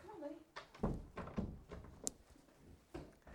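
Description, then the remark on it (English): Several dull thuds and rattles as someone pushes and pulls a locked door against its latch, with one sharp click midway and faint voices murmuring in the background. “I'm sorry, all the doors are locked.”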